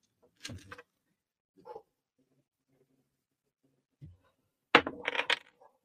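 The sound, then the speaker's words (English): Dice clatter and tumble across a mat in a few short bursts, with a small rattle early on and a louder scattered roll near the end; no one speaks. “Big roll. My fucking $20 booster pack of freaking double masters. All right. I got dice.”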